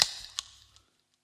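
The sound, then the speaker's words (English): A can of cider cracks open with a sharp pop and a bright fizzing hiss, followed by two smaller clicks and fading fizz, with no talking. “Here's a bit of ASMR for the crowd at home. This is a cider.”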